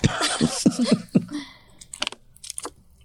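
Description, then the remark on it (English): A sip from a drink: a noisy slurp up front, then softer swallowing and small mouth clicks trailing off. No one speaks. “Take a sip.”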